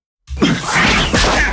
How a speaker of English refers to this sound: You can hear that ball slap against the glove. Wow. Yeah, that one had some stang on it, had some mustard.